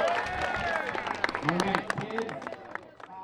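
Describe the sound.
A round of applause for the Junior Wildcats team: steady, dense clapping running throughout, mixed with excited voices and cheers from a crowd, fairly loud and continuous for a few seconds.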